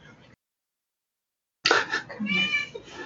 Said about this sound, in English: Pardon our loud cat. God, she's so obnoxious. But if we put her out, she's just going to be louder.